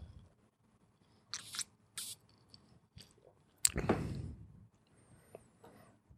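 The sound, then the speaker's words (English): Someone takes a sip of an old fashioned cocktail: a few soft clicks and mouth noises, then a short wet slurp, followed by a faint glassy ring, with no talking. “Take a sip of this old fashioned.”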